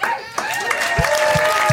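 A short, loud burst of crowd cheering and applause, with whoops and rising shouts layered over a dense, continuous roar.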